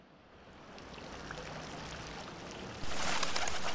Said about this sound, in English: As we stand here, we're watching pigeons fly out of a fountain in the central plaza.